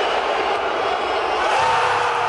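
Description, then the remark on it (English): A sports crowd in Albuquerque cheers and roars steadily, a dense wash of many voices at constant loudness throughout, with no single voice standing out. “If they get crowds like this every game, it'll be tough to beat.”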